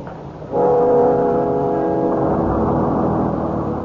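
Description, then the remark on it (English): The engine of a crowded bus kicks in after a brief quiet moment and drones steadily with a deep humming tone, its low rumble swelling toward the end as it accelerates. No one speaks. “The bus was crowded, and we had to stand.”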